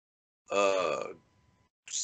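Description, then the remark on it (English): A voice imitates a weird, not scary scream that sounded like a drawn-out yawn, like a goofy version of the lion from The Wizard of Oz. It is a loud, harmonic, wavering vocal sound lasting about half a second, then a brief second burst begins. “I don't know what it was, but the scream was weird. What did it sound like? It wasn't like it sounded like a kind of like a yawn.”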